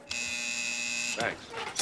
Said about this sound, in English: Wait, 1 minute. The buzzer okay? So you're causing chaos. Push the goddamn buzzer, will you?